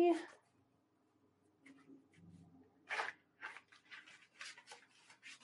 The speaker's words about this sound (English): This is the most boring part of doing cards on the air. All the shuffling. All the shuffling, right?